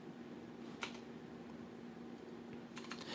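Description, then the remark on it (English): Sparse computer keyboard typing: a single key click, a pause, then a short quick cluster of keystrokes near the end, fairly quiet over a steady low electrical hum, with no voices. “And it's all of a sudden the show turned into my keyboard ASMR.”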